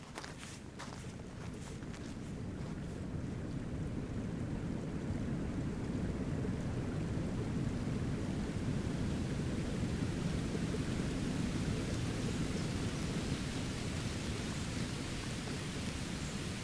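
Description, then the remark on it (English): Heavy wind roars and buffets steadily with freezing rain, a broad hiss, on a mountain route up to the Wells of Dee in the Cairngorms, Scotland; a few crunching footsteps of walkers sound at the start before the blustery rush takes over. “We follow one of her routes up to the Wells of Dee, navigating through biting winds and freezing rain.”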